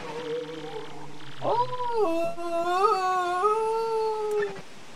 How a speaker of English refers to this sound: Whoa, that freaky voice is making noise again. The ghost must be nearby. I know it's a ghost, but it's still mostly a skeleton.